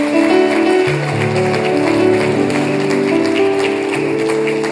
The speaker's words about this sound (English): Anyone in this section right here, if you see anyone with their hand raised, clap your hands.